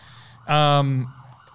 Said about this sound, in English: If you can't hear that, that's just, you know, that's the Redfern thing. We've got sirens here every single day.